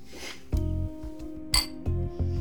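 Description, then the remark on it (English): Glasses clink together in a toast, a handful of bright taps spread over a couple of seconds, each leaving a clear ringing tone that hangs in the air. No one speaks. “Cheers, old boy.”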